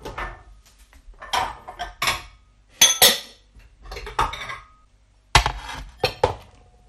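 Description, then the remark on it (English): Mixing bowls being taken out to make Naples biscuits (lady fingers) clatter and knock against each other in a series of sharp, bright bangs and clinks, spread irregularly over several seconds with short quiet gaps between bursts. “Well, I'm just getting my bowls out.”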